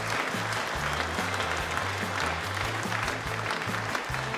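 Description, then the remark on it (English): A large crowd at a packed comedy club in Dublin claps loudly and continuously, a dense roar of applause, with a low, stepping bass line of music pulsing underneath. “So I don't know if you guys can hear that, but we had a great day out in Dublin at the Laughter Lounge, and the place was ram jammed.”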